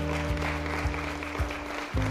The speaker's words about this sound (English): All right, come on, clap your hands. Get another big hand.